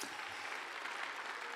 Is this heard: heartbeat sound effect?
no